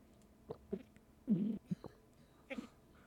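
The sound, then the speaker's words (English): Wet slurping of a drink of water, a few short sips followed by a longer drawn-in slurp and more brief sucking sounds, fairly quiet with no talking. “Well, we're going to do 1 minute of me slurping my drink and nothing else.”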